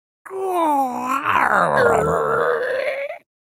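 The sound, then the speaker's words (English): A voice imitates a creaking door swinging open: one continuous, drawn-out groan about three seconds long, its pitch wavering up and down in a strained, squeaky rasp. No words are spoken. “So, somebody make like a door opening sound or something.”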